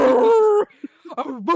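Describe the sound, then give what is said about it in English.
A voice imitates a dog, starting with a drawn-out, whining howl and then breaking into a few short, yipping barks, loud. “Start barking.”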